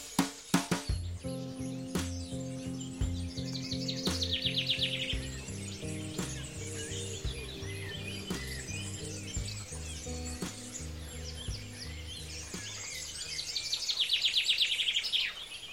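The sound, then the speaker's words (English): Dawn chorus birdsong from the European Global Dawn Chorus Project: birds chirp and trill over woodland ambience, with bursts of busy, overlapping song swelling near the start and again toward the end, set against a steady low rumble. “we surrounded ourselves with bird sounds and had a lovely chat.”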